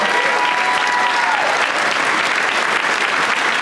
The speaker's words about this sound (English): That's a lot of fake applause. No, they're a nice crowd.